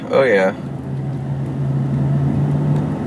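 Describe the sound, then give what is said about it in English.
A car cruising slowly in freeway traffic, slowed as drivers look at an accident on the other side of the freeway, heard from inside as a steady low engine drone and road rumble, after a brief wavering vocal sound at the start. “Of course, everybody's slowing down to take a look, but it's moving right now.”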